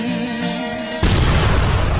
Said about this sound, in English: The explosion just a few feet away. If anyone has ever been around a real explosion, you know how powerful it is, as well as how deafening it is.